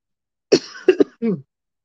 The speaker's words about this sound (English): why are you coughing on there for the people that's going to end up listening on Spotify?